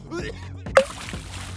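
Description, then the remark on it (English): A single sharp splash as a gemstone drops into a water tank holding about 10,000 gallons, with a brief ringing plop, followed by sloshing as it sinks fast and thuds on the tank bottom; muffled vocal sounds murmur in the background. “The gemstone sinks fast to the bottom of the tank, thudding when it reaches its final destination.”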